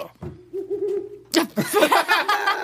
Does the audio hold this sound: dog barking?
no